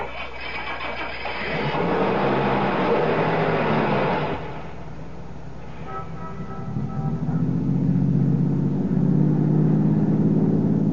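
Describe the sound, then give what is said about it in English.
A car engine cranks and roars to life, then settles into a steady hum that rises in pitch as the vehicle pulls away and accelerates, heading west toward the highway, fairly loud with no talking. “Start your car, head west to the highway, and keep going till I tell you to stop.”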